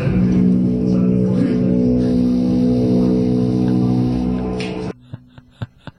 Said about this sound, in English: Can we reset? This is the Packers foghorn that they were playing last night.